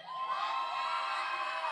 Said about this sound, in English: Did you enjoy the team competitions today? Come on. I heard a blue team yell.